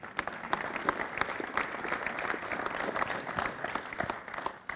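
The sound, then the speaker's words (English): A crowd applauds for the Lord, many hands clapping in a dense, crackling wash with sharp individual claps popping out, sustained at an even loudness throughout. “May you clap for the Lord, please.”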